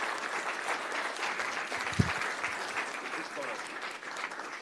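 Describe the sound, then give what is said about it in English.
A crowd of people applauds steadily, a dense wash of clapping that holds for several seconds with one sharp, louder clap standing out midway. “Okay, group applause for everyone.”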